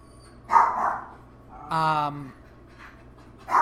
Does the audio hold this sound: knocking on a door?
no